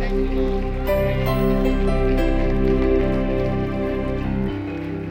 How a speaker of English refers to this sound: In Jesus' name, everybody give the Lord a clap. Hallelujah. Thank you, Lord. Thank you, Lord.